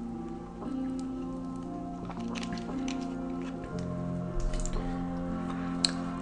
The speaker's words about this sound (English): Let me grab a little beverage of this purified water here. Bear with me.